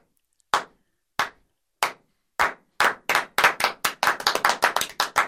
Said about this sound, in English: I'm like the crowd at the Olympic Games doing a slow clap, and I'm going to build up to the intro.